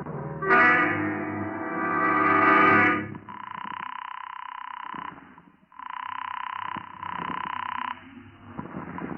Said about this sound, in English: I looked up the number of a local chemist and I made a phone call.